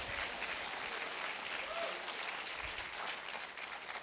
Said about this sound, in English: That is a great time for y'all to clap and say something about it.